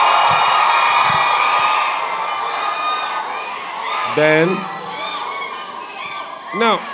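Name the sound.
audience shouting and cheering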